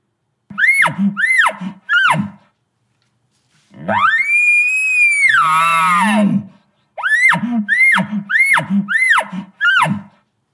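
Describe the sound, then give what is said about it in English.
An elk bugle: three short rising squeals, then a long, loud, high whistling note that breaks down into a low grunt, followed by a quick run of squealing chuckles. No talking. “And when I'd throw out the longer bugles, I just didn't get the response.”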